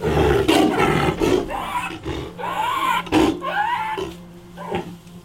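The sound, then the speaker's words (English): A hoarse, raspy roar from an animal in Ukraine suffering from gastroenteritis rumbles in several rough, heaving bursts, sounding like a chain smoker's hacking cough, with a low steady hum underneath and no talking. “But he still suffers from gastroenteritis, and his roar sounds like a chain smoker's cough.”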